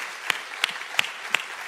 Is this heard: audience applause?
yes